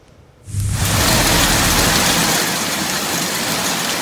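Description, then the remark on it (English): After a brief quiet moment, a loud, dense roar of damaging hail and heavy rain bursts in and pounds steadily in Maple Ridge, with a low rumble underneath and no voices. “Cleanup is still underway in parts of Maple Ridge, where damaging hail and flash flooding last week took many by surprise.”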